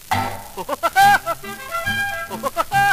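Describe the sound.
A voice does a cartoon woodpecker's laugh call, a quick, bouncy run of repeated high-pitched syllables in short rhythmic bursts, loud, over a steady low backing.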